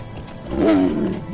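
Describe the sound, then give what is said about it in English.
A lynx lets out one short, throaty growl that rises and falls over about a second, loud against a steady low background rumble, with no talking. “Here's a lynx.”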